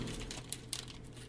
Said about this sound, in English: Then I would shove it into one of these tiny baggies. Where do you get these tiny baggies?